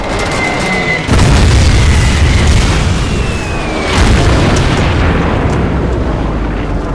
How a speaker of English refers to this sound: The destroyer is thumped by a murder of dive bombers, emerging from the sea spray with her bow pouring black smoke, seemingly chomped by shark attack.